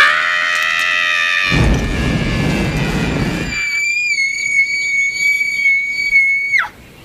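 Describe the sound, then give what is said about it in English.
A woman lets out a long, piercing, high-pitched scream, held steady for several seconds before it breaks off, preceded by a loud rushing burst of noise. “Pretty scary scream, huh?”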